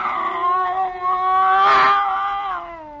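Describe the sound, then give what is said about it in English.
A scrawny cat named Clara, back arched and circling a Bushmaster snake, yowls in one long, drawn-out wail lasting about three seconds, loud, its pitch wavering and swelling in the middle before easing off, with no other sounds around it. “Slowly, it moved out into my line of vision. It was a cat.”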